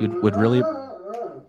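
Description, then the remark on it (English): A dog lets out a couple of quick barks that slide into a wavering, drawn-out howl, fairly loud, lasting just over a second. “Dogs are subscribing.”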